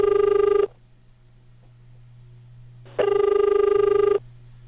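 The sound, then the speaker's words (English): A telephone ringback tone while calling Information (411): two buzzy, mid-pitched rings, one brief and one about a second long, separated by a pause of roughly two seconds, over a faint low hum on the line. “No one seems to be answering.”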